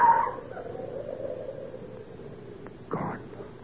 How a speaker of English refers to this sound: Sam Trelawney's dog. That brute hates me.